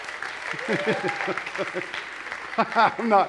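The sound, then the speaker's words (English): A steady patter of clapping from a small group fills the background while voices talk and exclaim over it, the applause holding fairly even for a few seconds. “I'm not sure why that merited applause, but yes.”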